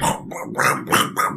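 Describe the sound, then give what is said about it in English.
A voice imitates chewing and growling: a run of four or five rough, rasping bursts in a steady, gnawing rhythm, fairly loud, with no words spoken. “It sounds like chewing and growling from the inside.”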